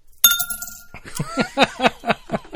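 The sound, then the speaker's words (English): Coins dropped into a glass: a single bright, ringing clink, then a quick rhythmic run of six or seven more clinks, fairly loud, with no one speaking. “with a pile of change and a glass.”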